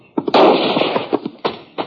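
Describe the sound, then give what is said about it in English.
Several gunshots ring out in a canyon at irregular intervals, fired by someone partway up the canyon wall, sharp loud cracks, the second followed by a long noisy roar, with no voices. “Now, who in the thunder are you shooting at?”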